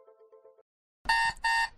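An alarm clock blares in two loud, harsh buzzing bursts, following a brief, softer tonal hum and a moment of silence.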